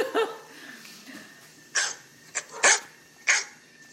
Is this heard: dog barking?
yes